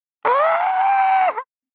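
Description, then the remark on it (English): A person screams as loud as they can at the top of their lungs: a single loud, sustained scream lasting just over a second, strong and strained from start to finish, ending with a brief wavering break as it cuts off. No other sounds. “I'm just going to scream as loud as I can at the top of my lungs.”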